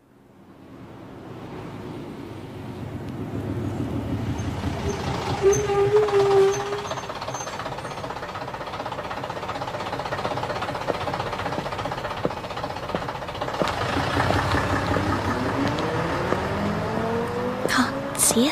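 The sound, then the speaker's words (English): A bus engine rumbles and drones steadily in fog, rising and settling as it moves, with a brief sharp hiss of air brakes near the end. “Don't know how that bus driver managed.”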